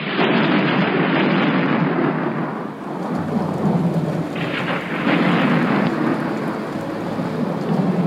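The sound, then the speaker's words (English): Heavy rain pours down on a tent in a field in a steady, dense roar for the whole stretch, with deep thunder rumbling underneath and swelling at times. No one speaks. “The rain is coming through the tent.”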